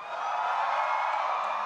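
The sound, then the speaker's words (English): An audience screams and cheers to vote for a Sophia Vergara impression, in one dense, steady roar of high-pitched voices, loud and unbroken, with no single voice standing out. “So if you want Sophia, scream.”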